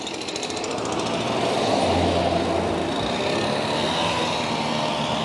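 A leaf blower used by a man roars steadily and loudly throughout, a dense rushing drone with a rapid, buzzing engine rattle underneath, holding constant with no voices.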